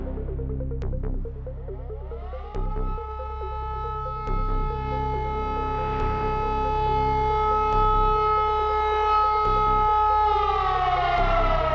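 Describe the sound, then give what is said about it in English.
A loud air-raid siren wails at sunrise as the Russian military advances, its tone rising then holding steady in a long sustained drone, with a low rumbling background and faint periodic thuds underneath. “Sunrise and sirens.”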